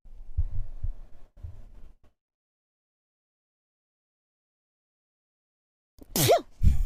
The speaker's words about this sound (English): Like, oh my God, I'm going to sneeze.